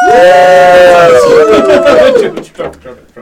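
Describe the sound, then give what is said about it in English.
Several voices let out a loud, sustained cheer for the heroes, called for by a judge to pick the winner of the first round, their pitch sliding gradually downward for about two seconds before breaking off into a few scattered, fading shouts. “And so he'll say, and a cheer for the heroes.”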